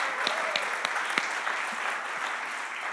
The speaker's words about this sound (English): All right, let's give our camp kids a round of applause.